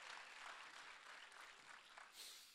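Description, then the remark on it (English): A crowd claps together in a dense, steady wash of hand claps, loud and continuous, swelling briefly near the end, with no voices standing out, as people are urged to clap louder in Jesus' name. “Come on, let's clap a little bit louder in Jesus' name.”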